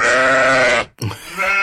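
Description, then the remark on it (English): A sheep lets out a long, wavering bleat, loud, followed by a shorter second bleat after a brief pause, with no talking. “I don't have a sound for seal. Oh. How about sheep?”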